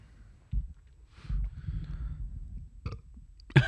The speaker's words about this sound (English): A little burp.